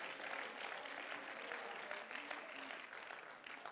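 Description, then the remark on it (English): An audience claps their hands in praise of God in a dense, sustained burst of applause, many overlapping claps forming a steady bright wash with no one speaking over it. “Clap your hands to him and give him praise.”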